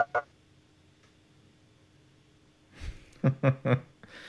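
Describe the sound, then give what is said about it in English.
A dog barks three times in quick succession in a recording studio, loud and sharp, preceded by a low thump and a brief stir of movement; no one speaks. “Encourage her to have a separate studio without a dog in it.”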